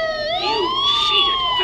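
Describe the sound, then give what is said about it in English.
A police siren wails steadily, its pitch sweeping slowly upward then easing off, loud with no voices over it. “Sirens. The police.”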